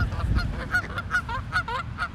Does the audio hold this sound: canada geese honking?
yes